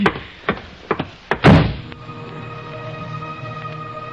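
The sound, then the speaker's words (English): A door handle rattles and a few knocking thuds sound before a heavy door slams shut as someone leaves, followed by a low, steady hum with faint tonal ringing. “I can find the door.”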